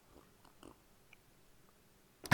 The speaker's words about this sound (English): Please put your cups up as we have our first slurp of the day.